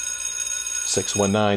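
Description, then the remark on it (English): A lunch bell rings with a steady, high metallic tone that holds throughout, while a voice briefly sounds over it in the second half. “At least for now, I think the lunch bell is about to ring.”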